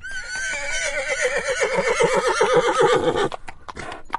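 A horse gives one loud whinny lasting about three seconds, its quavering call wavering and dropping in pitch, followed by a few brief clopping hoof sounds.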